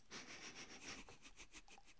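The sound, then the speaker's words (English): Soft, airy sniffing as a person wafts a cup of Cherry Cola Faygo soda, a few quick breathy inhales in a row over a faint fizzy crackle, quiet and with no talking. “Oh, he's sniffing. So he's wafting right now. This is Cherry Cola Faygo.”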